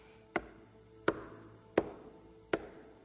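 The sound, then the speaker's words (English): Four firm knocks on a door, evenly spaced about a second apart, each a sharp hollow rap with a short ringing decay, heard alone. “And it's an incredible moment because Jesus stands at the door and he knocks.”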